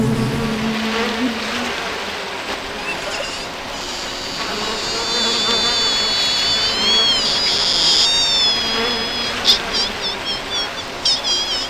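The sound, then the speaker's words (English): A dense, continuous buzzing of many worker honeybees at a hive, steady, with individual wingbeats rising and falling in pitch as bees fly in and out past. “Those are the workers. They do everything. Feed the drones, feed the queen, make the comb, gather the honey.”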